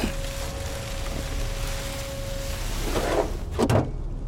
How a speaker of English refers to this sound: Wow, would you look at that! A trap door! Sorry, this is insane. I just got so lucky, trusting my guts. I didn't expect to find anything underneath the Christmas tree.